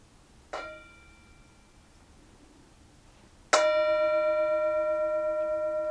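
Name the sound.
meditation bell ringing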